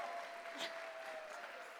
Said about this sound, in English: So let's give her a round of applause for that.